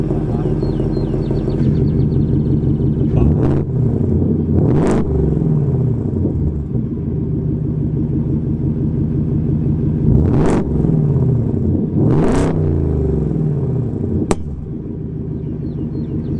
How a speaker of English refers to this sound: And, you know, it comes with the V8 sound, which a lot of people are really asking for.